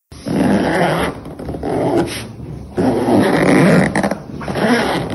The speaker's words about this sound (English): but it was actually a zipper going on a coat.